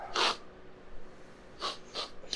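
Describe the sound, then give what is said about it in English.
Loud, sharp sniffing: one hard sniff, a pause, then two quick sniffs in succession, with no talking around them. “Someone here smells of Hellscape.”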